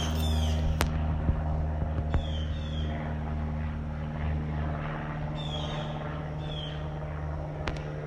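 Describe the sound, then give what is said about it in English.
A small propeller plane drones overhead with a steady, low, buzzing hum that holds throughout. A few sharp cracks and faint high chirps sit over the engine noise; no one speaks. “Sounds like a little propeller plane.”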